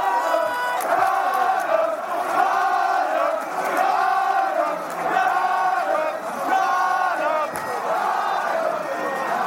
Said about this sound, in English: Crowd really don't know whether to cheer or just stand and hope.